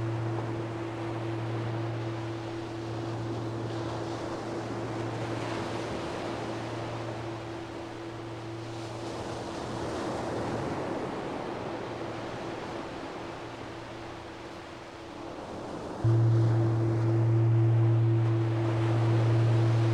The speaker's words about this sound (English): Tune into all of your senses and see, feel, and hear the calm sounds of the ocean.